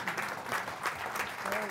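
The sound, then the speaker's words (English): An audience claps together in sustained, dense applause, a steady wash of many hands at moderate volume, with faint voices mixed underneath. “So you can applaud for that, absolutely.”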